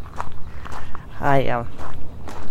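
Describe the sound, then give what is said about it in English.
Steady footsteps crunch along at an even walking pace for a couple of seconds as a person takes a walk, with a brief tonal, voice-like sound rising and falling midway through. “So I thought, well, I may as well just take you all on my walk and do the podcast at the same time.”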